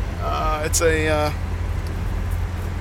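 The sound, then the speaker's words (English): Steady low engine rumble fills the cabin of a small blue Toyota pickup truck being driven, constant, while a voice speaks briefly over it near the start. “I'm in my car, or sorry, a truck. I'm kind of a truck guy. I'm in my little truck.”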